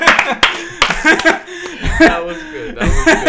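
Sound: people clapping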